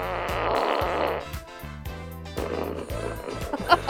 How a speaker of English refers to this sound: Alexa, make a fart noise.